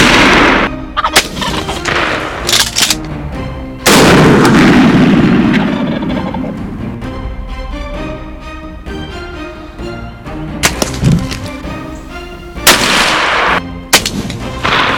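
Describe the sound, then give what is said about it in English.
During a turkey hunt, a turkey gobbles, then loud shotgun blasts ring out: a few sharp reports with a booming echo that trails off, and more bangs follow. No one speaks. “And of course, you know what comes next. Thumping turkey.”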